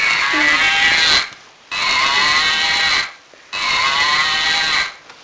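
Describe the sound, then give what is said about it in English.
A cow moos loudly three times, each call lasting about a second with brief pauses between, with no one talking. “Then they all heard crunchy footsteps coming across the yard and a very loud moo.”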